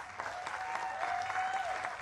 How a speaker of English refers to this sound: Let's just give Jesus another round of applause.